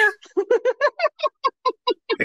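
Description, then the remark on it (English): A person imitates a cat's meow, a quick steady series of about a dozen short, chirpy mews, fairly loud with no other sounds. “but she would make a little meow sound, and I started using it as like a sound of affection or encouragement or excitement to other people.”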